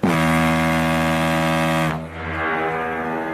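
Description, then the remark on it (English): The Titanic's horn, sounding as the ship leaves, gives one long, deep blast, steady and loud for about two seconds, then cuts off into a lower rumbling hiss that lingers to the end. “Guys, the boat just burped.”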